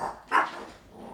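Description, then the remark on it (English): A dog gives one short, sharp bark, with fainter dog noises just before and after it. “And the dogs.”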